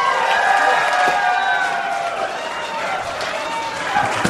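A group of people cheer and shout together in a loud, steady roar with a few scattered claps, lasting the whole few seconds without a break.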